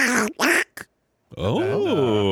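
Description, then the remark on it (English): A person does a raspy, cartoonish duck voice: a few short squawky quacks, a pause, then a longer garbled quacking babble with wavering pitch, loud. “Who's the better duck, Donald Duck or Daffy Duck?”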